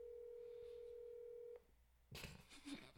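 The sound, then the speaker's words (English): A steady, low telephone call tone from a call placed via Siri on speakerphone hums for about a second and a half, then cuts off; after a brief pause, a burst of rustling, clattering noise follows. No one speaks. “Call him. I don't think he's going to pick up. He's going to go to voicemail.”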